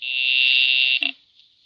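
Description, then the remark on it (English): A telephone rings with one loud, steady, high-pitched electric buzz that lasts about a second, then cuts off abruptly with a short clatter before quiet, as a caller rings the telephone service department operator. “I will ring the service department. I am ringing.”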